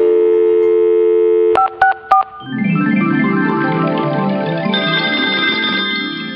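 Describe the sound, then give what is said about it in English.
A steady phone tone gives way to three quick keypad beeps as the numbers 770 are pressed on a cell phone, then a bright, melodic electronic ringing tune plays on, clear, with no voices. “You just have to press the numbers 770 on your cell phone.”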